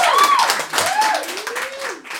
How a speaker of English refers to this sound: I'm going to edit an applause in. if we could actually just get a big clap now, just so we can edit that in at any point.